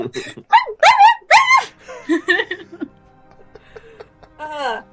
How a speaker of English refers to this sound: Who got these 12 yappy type puppies in here?